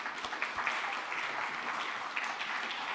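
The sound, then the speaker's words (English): A crowd applauds steadily for mothers everywhere on Mother's Day, a dense wash of many hands clapping at an even, sustained loudness for several seconds, with no voices breaking through. “And I, for fear of asking mothers to do anything more than they've already done, I don't want to ask you to stand up, but can we just give a round of applause for moms everywhere?”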